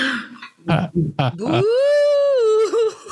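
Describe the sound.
Someone imitates a spooky ghost moan: a few short vocal bursts, then one long wavering "oooo" that swoops upward, holds steadily for over a second, and dips away at the end.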